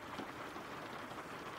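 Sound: rain falling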